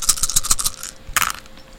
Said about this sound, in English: And it's a sevens and upper successes. Okay, it is 10 dice time.